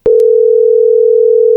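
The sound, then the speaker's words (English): A steady, loud telephone dial tone hums continuously after a brief click as a call is placed to a festival representative, holding one unbroken pitch until it cuts off abruptly; no voices are present. “Let's see if we can get them on the line.”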